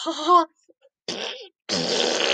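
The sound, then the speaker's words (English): A voice imitates farting with three blown raspberry bursts: a short buzzy one, a brief pause, then a sputter and a longer, rougher blast, all loud. “Yeah, you just fart into the tank, and then you know your car's ready to go.”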